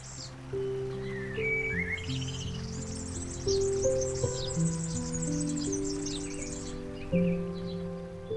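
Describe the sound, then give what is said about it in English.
Garden birds chirp and twitter in a busy, continuous chorus in a home garden at feeding time, while sustained low musical tones hold steadily underneath. No one speaks. “I'm in my garden and it's time to feed the birds.”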